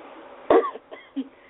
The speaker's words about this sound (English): Excuse me for coughing. That's okay.